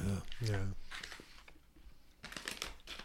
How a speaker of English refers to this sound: I got to finish chewing and cleanse this palate.